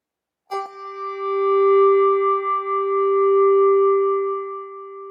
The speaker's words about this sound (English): And we'll give time for each bell to ring between each name said.